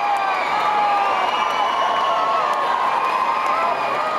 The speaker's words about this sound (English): Close your eyes and imagine thousands of screaming teenage girls.